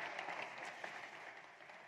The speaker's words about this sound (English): In fact, let me see if you guys, man, there's clapping for this.